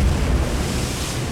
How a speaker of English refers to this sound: The wave washed over Hoori, plunging him beneath the sea.